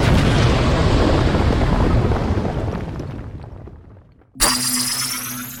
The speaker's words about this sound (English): Where's the kaboom? Two. There was supposed to be an earth-shattering kaboom.